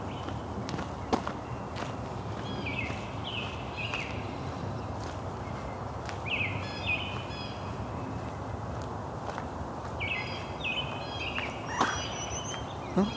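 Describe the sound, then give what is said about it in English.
Outdoor dawn chorus with a white-bellied woodpecker and a ruby-crowned kinglet: bursts of high, chattering notes return every few seconds over steady background hiss, with a few sharp clicks scattered throughout. “white-bellied woodpecker, and a ruby-crowned kinglet.”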